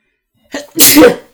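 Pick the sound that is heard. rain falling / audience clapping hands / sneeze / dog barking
sneeze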